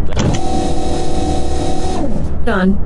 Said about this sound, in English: It sounds like if they spray the fuel in the tank or something. They do. It's a truck that hooks up